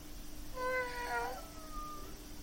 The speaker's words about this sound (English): Oh, I got the motor and a chirp. Wanna play? Yeah, Callie definitely meowed right there.